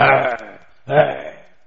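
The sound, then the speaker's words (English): A voice imitates snoring with two rough, drawn-out breaths separated by a brief pause. The snores are fairly loud, and no other sounds are present. “And the man was snoring.”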